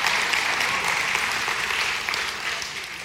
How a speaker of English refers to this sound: And I can't tell you how many people come to us every single week and they say, I've never heard the Bible taught that way. Been in church my entire life. You know, not only, clap for that, yeah.